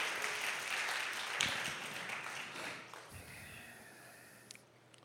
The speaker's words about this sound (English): We clap louder for that last part.